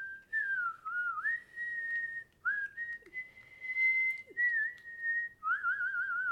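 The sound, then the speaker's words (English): A person whistles a tune loudly and continuously, holding long sustained notes with gliding pitch bends and brief breaths between phrases, with no talking. “And in particularly difficult moments, such as when I'm watching a fellow SEAL die on the battlefield, I would whistle the same tune, but much, much louder, drowning out all my sorrow and fear with the awesome power of whistle noises.”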